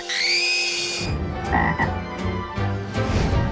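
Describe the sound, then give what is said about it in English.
A high, whistling tone opens, then a frog croaks loudly in a run of rough, buzzy bursts, roughly four or five in an uneven rhythm. “There's no way I would ever, ever, ever kiss a frog.”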